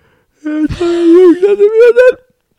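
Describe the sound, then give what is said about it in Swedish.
A single long yawn, a deep reflexive open-mouthed inhalation: a breathy intake that turns into a drawn-out voiced groan, rising slightly in pitch before fading out, with no talking around it. “Men det är en djup reflexmässig inandning med öppen mun.”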